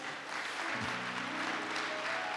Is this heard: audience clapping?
yes